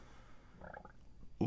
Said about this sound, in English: Ooh, hiccups again.